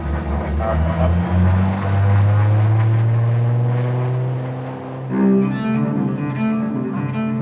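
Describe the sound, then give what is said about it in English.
A small twin-engine propeller airplane drones loudly and steadily, heard from the passenger side inside the plane, its engine tone shifting and dipping briefly before surging again, with no talk over it. “I'm sitting on the passenger side of a small twin-engine airplane.”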